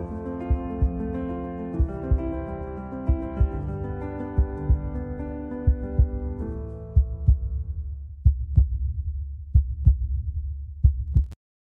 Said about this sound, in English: I like the heartbeat gives me chills at the very end of it.